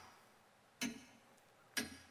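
Two sharp clock ticks land about a second apart, crisp against a quiet, faintly hissing background, with no voices present.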